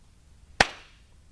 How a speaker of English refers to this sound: At the same time? Did we clap at the same time? Yeah. Yo! Dude, we did it! Oh my gosh. No way. Guys, we masked each other's claps.